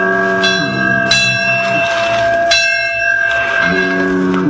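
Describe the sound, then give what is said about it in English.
Buoy bells clang at sea, out in the ocean beyond sight of land at night, in a few irregular strikes, each leaving a loud, sustained metallic ring that hangs over a low, shifting drone. No voices. “Out there in the ocean, beyond the sight of land, Little Toot spent a frightful night, tossed about by the big waves, while the life buoys and sounds in the night made eerie noises.”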